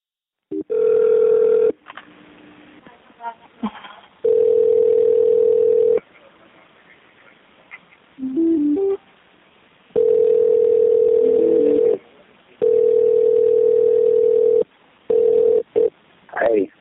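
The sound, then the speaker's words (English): A telephone line tone sounds in long steady bursts, roughly two seconds each, separated by quieter gaps of line hiss and faint clicks, as a 911 dispatcher tries to call a suspect back, with no one speaking. “Dispatch really wanted to get this guy back on the phone and get him talking.”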